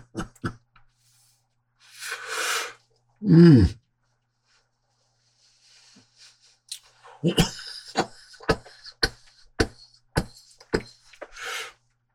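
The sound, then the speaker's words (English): A breathy exhale, then one loud, deep cough after smoking a hashish blend, followed after a pause by a rapid run of short, sharp coughing bursts and a final raspy breath. “In combination with the big cough, a big rush.”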